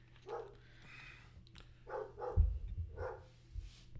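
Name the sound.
dog barking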